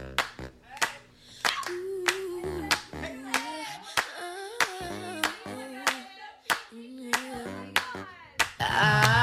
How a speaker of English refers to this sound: Claps for her. Yes, we love her.